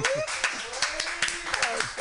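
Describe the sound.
Audience applause in San Francisco: a dense, steady wash of many hands clapping, with a few sharper claps standing out and a voice or cheer faintly riding over the top.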